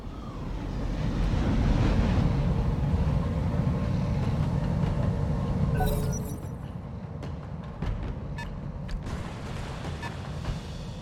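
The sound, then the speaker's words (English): A heavy amphibious armored personnel carrier (APC) rumbles loudly through water, its engine churning, then splashes up out of the water midway and continues with a lower, steadier drone. “Coming up out of the water.”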